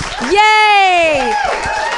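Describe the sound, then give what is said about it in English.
Audience applause at a live comedy show, a steady wash of clapping from a crowd, topped by a loud, long vocal whoop that rises and then slides down in pitch over about a second. “Clap it up for yourselves.”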